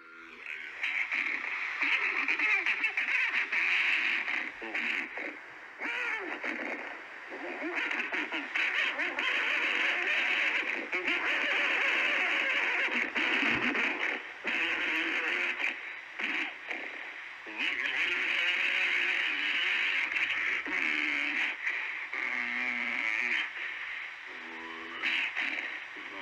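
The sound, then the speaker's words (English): Loud, raspy, quack-like calls from two Bigfoot voices, male and female, overlap in a near-continuous back-and-forth with warbling, chattering shifts and only a few brief pauses. “Or no, this is the male and the female interacting.”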